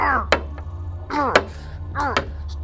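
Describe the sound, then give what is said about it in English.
Three hard, sharp knocks land at a steady pace, each one a chair striking a window about 30 feet above the ground that holds and does not break. Strained, grunting vocal sounds rise just before every blow, with a low hum underneath. “I'll just break the window with this chair.”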